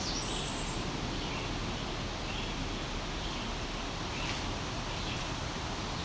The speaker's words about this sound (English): Okay. I don't know if the wind's helping or hindering. For seeing this bird. One hand it could blow a leaf out of the way. The other makes it harder to see him move.